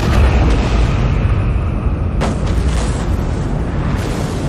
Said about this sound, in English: In a moment that was equal parts rage and meditation, I detonated each drone's thermonuclear explosive.